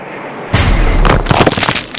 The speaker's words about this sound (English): when the first copper core fragment missile crashed into the turret.